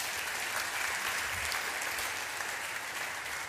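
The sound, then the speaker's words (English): A crowd gives a round of applause for a man, dense overlapping clapping with a bright, hissy texture that holds at an even loudness for a few seconds, with no voices over it. “So this fine Christian man, shaped by God's word all that time, give him a round of applause.”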